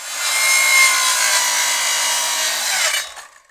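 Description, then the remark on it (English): A table saw in a barn rips through wood in a loud, steady, harsh buzz for about three seconds. Then it is switched off, and the motor's hum drops in pitch and winds down to silence. “He suddenly turned the saw off and walked over to his new ghetto blaster.”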